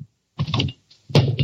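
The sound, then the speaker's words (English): A hammer drops onto a foot: a loud, clattering thud with rattling, knocking bits, a short pause, then a second heavier burst of banging and clatter. “Oh, my foot! Daddy wondered where that hammer was.”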